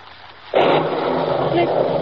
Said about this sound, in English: It's thunder. There is a storm.